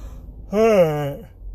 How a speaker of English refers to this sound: Man, I can't stop yawning. Can't. If you got the trick to stop yawning, maybe it's get more sleep.